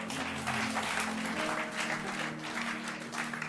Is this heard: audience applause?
yes